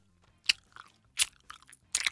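Crunchy chewing close to the mic, with three loud bites around half a second apart plus softer munching between them, no talking.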